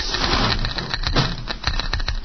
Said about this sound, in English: Shut off that Geiger counter.